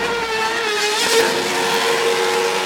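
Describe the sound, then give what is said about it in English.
A Red Bull Racing Formula One car driven by Sergio Perez on the streets of Dallas, Texas, screams at high revs, a loud, sustained whine with shifting harmonics and a brief surge near the middle, continuous with no talking. “Red Bull Racing's Sergio Perez took an F1 car to the streets of Dallas.”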